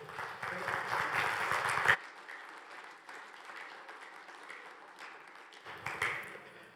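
audience applause

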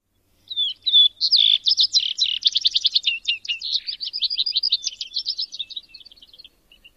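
vesper sparrow song

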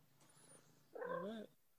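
cat purring

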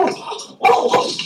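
dog barking

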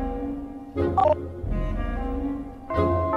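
telephone number being dialed

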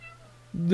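cat meowing

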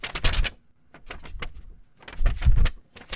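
paper rustling

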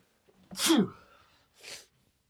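sneeze

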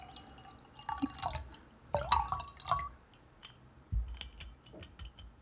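water being poured

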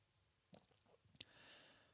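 sipping hot tea

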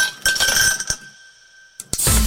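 glass clinking

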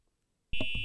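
fire alarm ringing

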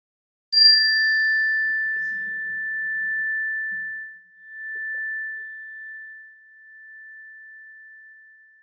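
chime ringing

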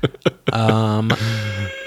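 door buzzer

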